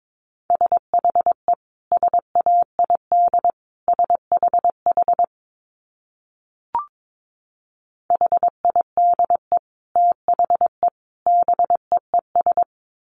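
Morse code sent at 22 words per minute as a single steady mid-pitched beep, keyed in quick dots and dashes at a brisk pace, with a brief pause and a faint click partway through. No voices.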